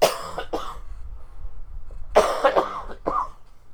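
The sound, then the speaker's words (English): Several dry coughs from a sick man in two short bouts with a pause between, slightly distant and moderately loud, with no talking. “Sorry, I'm attempting to cough as far off as possible, but, whoops.”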